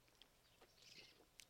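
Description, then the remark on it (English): Several faint, high-pitched bird chirps sound in the background, spaced irregularly over a quiet hum with no one talking. “You know, we wouldn't hate it if we were interrupted by a few birds in the background.”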